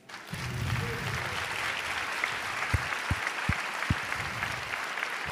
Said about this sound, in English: Even as we clap our hands